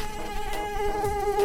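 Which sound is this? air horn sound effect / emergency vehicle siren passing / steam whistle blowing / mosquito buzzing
mosquito buzzing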